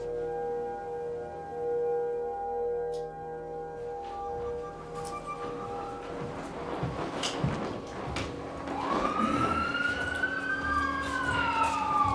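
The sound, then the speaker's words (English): An emergency vehicle siren wails through city traffic noise in Worcester, its pitch sweeping up and down and growing louder and clearer toward the end, with steady engine hum underneath and no talking. “You will not hear a cricket in a city, but you will hear sirens constantly.”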